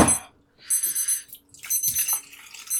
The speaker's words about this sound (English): Of course, hear my alarm going off.